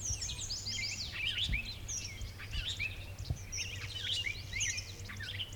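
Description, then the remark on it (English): A lively outdoor bird chorus at Dinosaur: a robin's cheery caroling phrases mixed with a buzzy clay-colored sparrow and squealy, grunty starling calls, continuous, with Canada geese in the background over a low steady rumble. “Okay, we're hearing a robin just doing that beautiful cheery-up, cheerio thing. And the buzzy clay-colored sparrow.”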